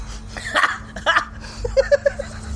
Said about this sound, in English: just burped.